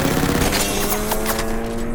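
A rapid burst of aircraft machine-gun fire at a Zero diving down from above, tracers slicing through: a dense stream of sharp cracks over a steady droning hum, loud and continuous for a couple of seconds before thinning slightly at the end.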